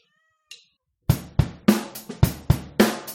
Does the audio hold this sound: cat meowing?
yes